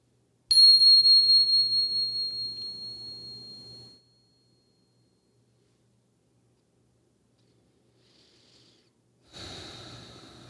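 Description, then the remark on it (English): A meditation bell is struck once, its bright ringing tone fading slowly over about three seconds into silence, followed near the end by a soft breathy rustle. “As you're ready, settling in, here comes the bell.”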